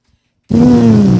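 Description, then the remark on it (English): After a brief silence, a loud, steady lip buzz starts abruptly and holds a single low, brassy pitch that drifts slightly downward, a trumpet player buzzing her lips without a mouthpiece to imitate a trumpet tone in a class demonstration. “All right, this is to make a trumpet sound. Go ahead and buzz once.”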